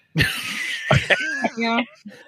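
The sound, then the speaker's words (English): A couple of harsh coughs burst out one after another from a person who still has a lingering cough, followed by a short strained vocal sound like a stifled laugh or throat clearing. “I still got a little bit of a cough.”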